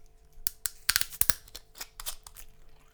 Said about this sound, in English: Oh, that was an unexpected fizz.